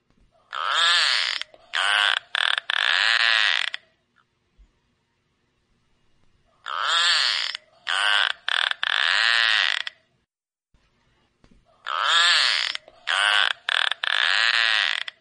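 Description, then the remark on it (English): Narwhal clicks and whistles: three loud bursts of rapid, creaky clicking with a buzzy, whistle-like tonal edge, each lasting a few seconds and separated by silence, with no talking. “I'll see if I can get a click and a whistle for you.”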